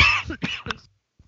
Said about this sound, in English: Corona coughs.